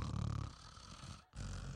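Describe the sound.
A voice imitates loud snoring of a woman in church: rough, rumbling snorts in two drawn-out bursts separated by a brief pause, with no actual words spoken.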